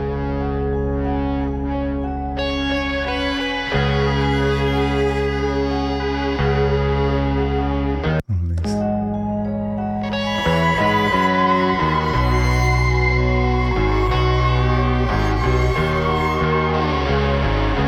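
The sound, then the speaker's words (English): A violin being played while its sound is manipulated at the same time through a tape space echo, its sustained, layered tones smearing into a dense, continuous wash, with a brief abrupt break midway before the swirling repeats resume, loud. “So that's the violin playing, and at the same time, David is using the space echo to manipulate that sound.”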